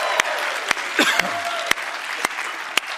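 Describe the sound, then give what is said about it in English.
A church audience claps and cheers for the New Life family worshiping out in North Platte, steady applause filling about three seconds, a dense wash of clapping with a few sharper claps standing out and a brief cheer rising through it in the middle. “Come on, give it up for them.”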